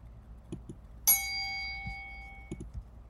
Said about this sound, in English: Oh, my God. I just have to ding the bell.